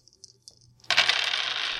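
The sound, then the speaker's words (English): A few light taps lead into a sudden clattering of dice, including a black die, tumbling and rattling across a table, continuing busily to the end with no voices. “Oh, you also have a black dice.”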